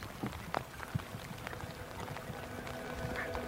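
Soft, steady cold rain patters outdoors, a dense hiss of drops with scattered sharper taps and what may be footfalls. The sound is fairly quiet and continuous, with no voices.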